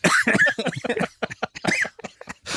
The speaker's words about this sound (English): Oh, my gosh, you're coughing. You're coughing. You're aghast at this question.